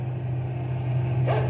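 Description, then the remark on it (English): A truck engine drones steadily at a low pitch, a constant mechanical hum with no breaks, moderately loud, with no voices, as the truck drives down steep downgrades on the way back to camp. “Some pretty bad downgrades going back to camp, Blackie, old fella.”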